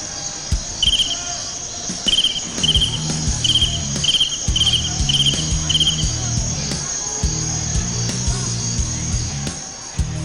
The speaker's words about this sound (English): The crickets?